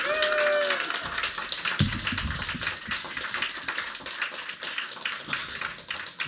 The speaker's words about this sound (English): So if you want to give them a nice round of applause.